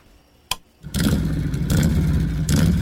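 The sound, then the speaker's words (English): A sharp click, then a motorcycle engine roars to life and revs loudly, holding a steady rumbling growl with a couple of throttle surges, with no talking. “It's hard to be without your bike, so do something easy and protect it with Progressive Motorcycle Insurance.”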